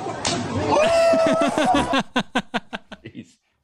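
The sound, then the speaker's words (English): A sharp, loud open-hand smack to a man's mouth and jaw at a bar, knocking him out, lands right at the start, immediately swallowed by excited shouting and a rapid run of fading, rhythmic laughing bursts. “He's like, he just took a thunder slap to the mouth.”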